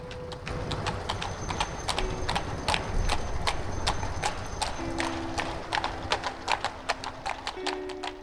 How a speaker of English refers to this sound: Seven horses lead the way, walking down the street together. Four of them are being ridden by soldiers from the Saison platoon of the 3rd Infantry Regiment, the oldest infantry in the U.S. Army.